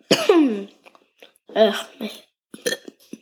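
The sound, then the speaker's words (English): A loud burst of coughing followed by throat-clearing and a burp, with a couple of softer coughs trailing off; short pauses break up the noisy, wet bursts. A person coughing and burping from eating popcorn. “I'm burping and coughing from the popcorn.”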